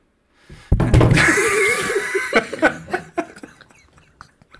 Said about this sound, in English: That was so loud. So, all right, that's how we know. I knocked my mic over so hard it muted itself.